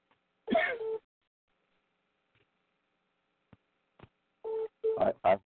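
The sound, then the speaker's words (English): A battery-powered phone sounds its low-battery warning: a couple of short electronic beeps, then a gap with faint clicks, then another quick cluster of loud beeps mixed with rustling bursts. “It's probably my battery signaling that I need to jump off.”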